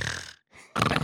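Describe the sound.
A voice imitates snoring: a rasping, throaty inhale, a brief silence, then a louder snorting exhale, with no other talk.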